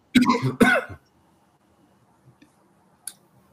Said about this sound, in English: And coughing.